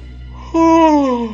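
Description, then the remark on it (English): A nurse at a reception counter gives a loud, drawn-out yawn that breaks in suddenly, a voiced tone that slides steadily downward in pitch for about a second before tapering off, over a low, steady background hum. “The nurse loudly yawns.”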